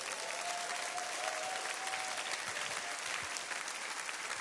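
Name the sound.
warm audience applause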